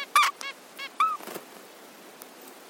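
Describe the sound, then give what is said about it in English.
Short, squeaky nasal calls from a mother and father zebra finch talking to each other about their egg incubation shifts, several quick bursts trading back and forth with brief gaps, bright and harmonic, over a faint hiss with no talking. “That's Mylène Marriott from Deakin University, and she was studying how mum and dad zebra finches chat to each other to figure out how long each of their egg incubation shifts were going to be.”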